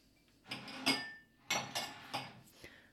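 Several sharp clinks and clatters of glassware and dishes as someone fetches a favourite drinking glass, arriving in a few bursts with brief pauses between, one leaving a thin ringing tone.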